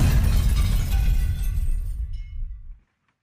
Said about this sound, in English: When they see hints of the cliff's edge ahead, it's already too late. The car soars off the cliff and explodes.